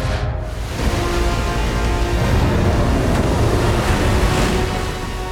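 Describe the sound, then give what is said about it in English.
Loud ocean surf crashes and churns continuously, a dense roar of breaking waves with a gusty, windy edge and no voices. “As the monster stepped into the ocean, the waves bucked them back and forth.”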